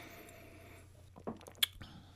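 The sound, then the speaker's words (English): Whiskey made with millet in Minnesota poured into a small dram glass: a few short, soft splashy gurgles and one sharp glassy clink, set over a steady low hum with no talking. “So let's pour a little in the dram here and take a taste.”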